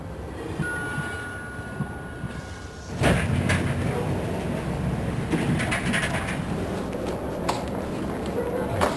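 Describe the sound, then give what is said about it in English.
A train rolls into a station, arriving on Platform 2 as the next train to South Point: a low, steady rumble suddenly swells louder, with metallic clanks and hissing bursts, over a background of indistinct voices. “The next train to South Point is now arriving on Platform 2.”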